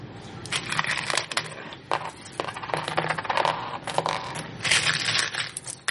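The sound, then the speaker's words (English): Continuous metallic scraping and clicking as two pennies are rubbed together, a gritty, uneven friction sound with sharp little ticks, steady for several seconds with no voices. “For those who couldn't tell, since I didn't do it by the microphone, I was rubbing two pennies together.”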